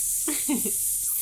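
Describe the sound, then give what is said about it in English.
A voice imitates a sizzle with a steady, bright hiss lasting just over a second, and brief low voiced sounds rise briefly beneath it partway through. “That sizzle made me want fajitas.”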